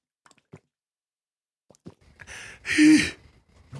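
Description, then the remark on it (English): A few small, sharp vocal catches, then a louder, breathy burst with a brief voiced squeak: a person's hiccups. The sounds are isolated, with no talking. “But, oh, no, I got the hiccups.”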